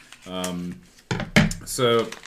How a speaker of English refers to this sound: This is wrapped up, and I don't know if the paper is part of it, so I'm going to kind of be careful as I rip it in half immediately.